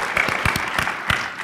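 A round of applause from a crowd for a participant called down from the audience: dense, steady clapping with sharp individual claps standing out, fairly loud and sustained through the whole moment, with no talking over it.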